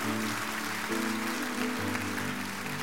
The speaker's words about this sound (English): I'm so proud of you. Give this man a big round of applause. Proud of you. Proud of you.